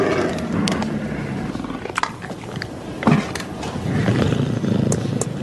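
A puma in a Jack Link's Jerky advert roars and snarls in a sustained, raspy growl that swells and fades, with a few sharp bursts and scuffing noises in between, and no speech.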